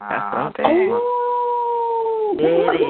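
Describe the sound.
A person lets out a long, steady wolf-like howl, held on one pitch for over a second after a few brief vocal bursts, followed by a short return to voiced sound.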